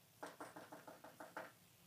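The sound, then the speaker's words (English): A quick, even run of about eight knocks on a door, fairly soft, each tap crisp and short with no talking around it. “So anyways, so it'd be like, so we knock on the door, and it's like, okay, I don't think they heard us, right?”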